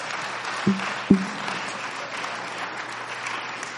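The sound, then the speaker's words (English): A church audience claps hands to the Lord in steady applause for a few seconds, broad and rustling, with two sharp low thuds punctuating the start. “If you believe that, clap your hands to the Lord.”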